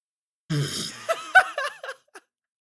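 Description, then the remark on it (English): A loud, buzzy fart rips out, followed by a few shorter squeaky sputters trailing off over about a second and a half. “And then the last one, I have farts.”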